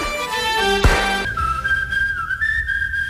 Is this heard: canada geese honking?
no